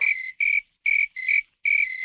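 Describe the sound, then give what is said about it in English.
Crickets chirp in five quick, shrill trilling bursts separated by short pauses, loud with a steady rhythm, and no voices, triggered by a button on the sound board in the GZM studios sound room for a nighttime scene. “So if I need cricket sounds for a nighttime scene, for example, I hit this button, and it sends the message to the cricket wranglers we hired to let those cute little bug musicians do their thing.”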